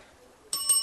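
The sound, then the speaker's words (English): After a brief near-silent moment, a bright bell suddenly rings out to mark a correct answer in a quiz game, its clear metallic tone sustaining and shimmering through to the end with no talking over it. “Why does he get the bell when he gets it right, and I get nothing when I get it right?”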